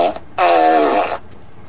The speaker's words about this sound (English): I wish Lady Jerry was here because she gets such a kick out of the fart machine.